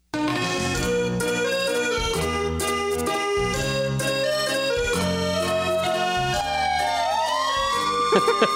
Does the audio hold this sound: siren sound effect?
yes